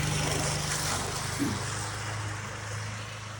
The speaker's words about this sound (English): here's a little video clip of Kanan recently as he was mowing the yard